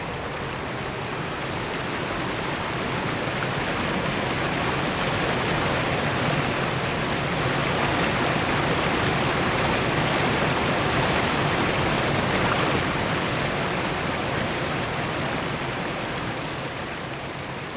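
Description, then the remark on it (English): A steady rush of running water, like a stream spilling over rock, flows over a stone where a little pool has gathered in one niche, filling the whole stretch with an even hiss and no pauses or voices. “a little pool of water has just gathered in one niche there on the stone”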